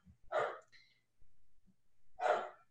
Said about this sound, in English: We do like how the dogs are always ready to participate in the shows. And they are always making some sort of noise to let us know that they can feel the energy.